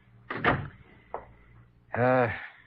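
A door opens or closes: a short rattling thump, a brief knock, then a drawn-out tonal creak lasting about half a second, fairly loud against a quiet background.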